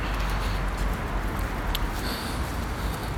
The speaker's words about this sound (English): I've just gone outside now. There's some traffic and it's a little windy.